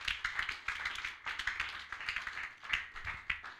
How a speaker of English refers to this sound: Oh, can you clap your hands for the Lord?